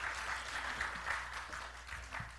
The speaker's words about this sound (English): That, please clap for him again. Thank you. Thank you, Jesus.